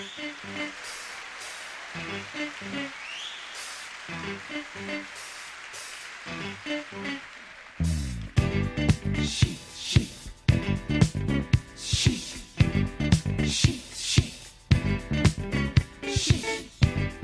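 A studio recording of a song plays: a sparse, quieter intro with light rhythmic pulses, then a sudden jump into a loud, full arrangement with a steady driving beat and dense layered instruments.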